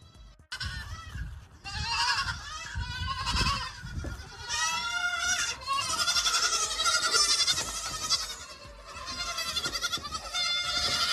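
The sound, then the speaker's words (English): A herd of goats bleats continuously, many overlapping wavering cries, loud and insistent for the whole stretch with no talking. “We went from the goat to a bunch of goats.”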